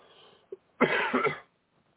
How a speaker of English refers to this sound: I'm still coughing.